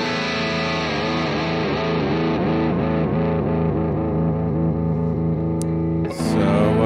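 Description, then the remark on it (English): A heavily distorted Ernie Ball Music Man electric guitar plays continuously, holding thick sustained chords with wavering bends and vibrato, loud throughout, with a brief sharp noise burst near the end. “Awesome guitar. I've been playing this thing since 1992.”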